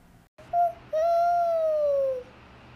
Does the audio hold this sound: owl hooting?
yes